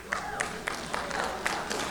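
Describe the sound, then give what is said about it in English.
A short burst of audience applause: many hands clapping in a dense, uneven patter over a steady wash of crowd noise, moderately loud, in response to the speaker saying he still drives his used 1999 Mitsubishi Mirage. “I didn't expect that to get a clap.”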